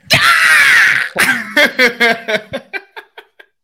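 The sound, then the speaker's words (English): A person loudly imitates a bald eagle's screech: a long, harsh, high cry followed by a descending series of about ten short, staccato chirps that fade out. “But you damn straight, I will be screeching like a bald eagle everywhere I go.”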